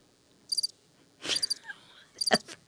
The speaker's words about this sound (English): Whatever. You and your crickets.